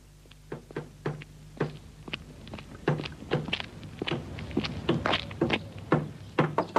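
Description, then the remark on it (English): A long run of dull, irregular knocks on a door, each a short thud, moderately loud, with no one speaking. “I hope you haven't been knocking long.”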